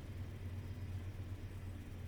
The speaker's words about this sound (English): I live about 75 yards from a train. It's a freight train. It's the Norfolk Southern line.